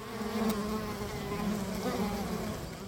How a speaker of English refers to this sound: Yes, it was bees.